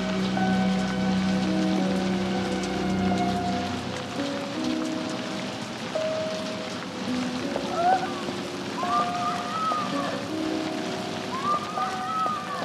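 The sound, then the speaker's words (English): Steady rain pattering on a hard surface, a continuous dense hiss of drops that holds at a fairly even level throughout, with faint higher tones drifting in the background. “No, honey, we'll wait until it slows down.”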